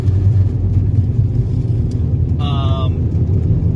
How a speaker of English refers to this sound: And I'm in the car. I'm in the car. It's a car episode. So, that's always fun. There's always going to be background noises, clicks, and engine noise and all that kind of crap.